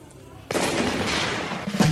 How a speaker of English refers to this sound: Oh, shotgun. Got it right off the bat. We need a buzzer. I could name that song in one shotgun blast.